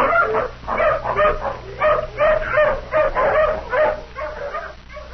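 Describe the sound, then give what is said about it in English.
A hound, having sniffed a shirt to pick up a man's scent, lets out a steady series of short, eager barks and yips mixed with whimpering, fairly loud, repeating in a quick rhythm with no talking. “Come on, hound, sniff. Take another smell of this shirt.”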